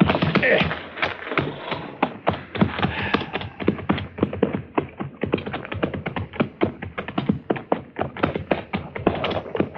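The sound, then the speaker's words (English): Horse hooves clip-clop in a quick, steady, overlapping rhythm, as if several horses are trotting together, continuous from start to finish; no one is driving the horses. “That looks like horses down there.”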